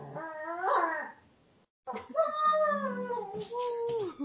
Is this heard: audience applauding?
no